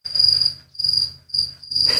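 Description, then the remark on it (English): Crickets chirp in four steady, evenly spaced bursts, each a bright, high trill, fairly loud, with no voices in the background. “Crickets? No opinion really?”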